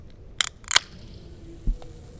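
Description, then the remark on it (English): A can of Coca-Cola is cracked open: two quick sharp metallic snaps with a brief burst of carbon dioxide fizz, followed a moment later by a soft dull knock, with no one speaking. “I can hear that fizz. That fizz is carbon dioxide.”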